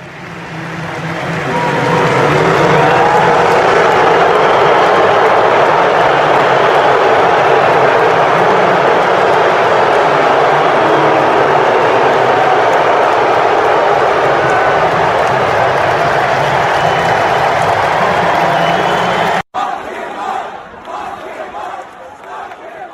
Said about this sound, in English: the moment he realized he was being booed and not being greeted as a victorious leader